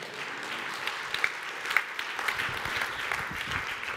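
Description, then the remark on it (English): A church audience applauding together during a service, a dense, steady patter of many hands clapping at moderate volume for several seconds, with no one talking over it. “Hey, they clapped at the last service when I said that.”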